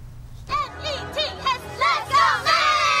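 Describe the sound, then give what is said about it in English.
A crowd of about 500 Taiwanese Americans waiting outside the New York Mets' Citi Field on Taiwan Day for selfies with the Rakuten Girls cheers and shouts after a brief quiet start, many high-pitched voices overlapping in rising, wavering yells that swell louder toward the end. “They also attracted a crowd of 500 Taiwanese Americans who waited outside the stadium to get a selfie.”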